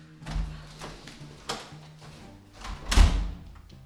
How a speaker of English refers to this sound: I locked the door, bolted it with the keychain, and dragged the chair next to the study table and placed it against the door.